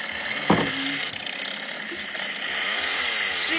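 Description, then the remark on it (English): A chainsaw starts up and roars loudly and steadily, its harsh engine buzz filling the whole stretch with a few brief surges in pitch. “Gets the chainsaw.”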